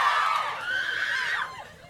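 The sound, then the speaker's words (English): A crowd of fans in the UK screams in a sustained, high-pitched roar of overlapping voices, loud, with shrill rising and falling wails that fade slightly toward the end. “We're going to have to be really careful on word count, because if they scream every word, we're in trouble, right?”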